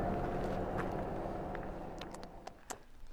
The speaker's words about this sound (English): One car coming. Come on, don't turn off. Don't turn off.